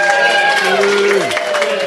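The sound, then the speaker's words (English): A live radio show audience at a music performance cheers and claps steadily for two seconds, a dense wash of applause with a loud voice whooping high and then sliding down in pitch above it. “Could you make some noise out there so that they know?”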